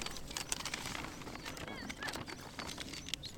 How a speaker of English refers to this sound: Skylarks and cars in the distance and the faint wind.